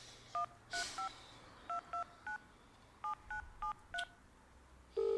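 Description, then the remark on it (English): A phone keypad beeps through a series of dual-tone presses, about ten short crisp tones in uneven rhythm, clear, ending with a longer steady tone. “Give me my phone.”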